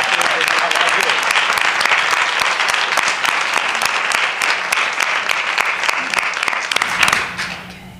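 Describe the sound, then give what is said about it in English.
A crowd applauds steadily for the pitchers at a story pitch session with editors, a dense wash of clapping that holds loud for about seven seconds before quickly tapering off into a few scattered claps and quiet. “And then I just want to give the pitchers a round of applause before we even start, because they're really putting themselves out there.”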